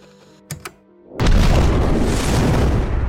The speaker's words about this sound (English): As the explosion happens, there's still a little bit of Connor left as they take over him.